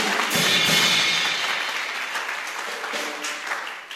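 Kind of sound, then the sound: crowd, audience clapping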